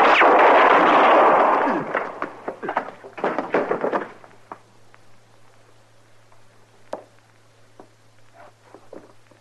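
A loud, roaring blast of gunfire gives way to a rapid flurry of sharp shots, then a few scattered, fainter cracks over a low steady hum.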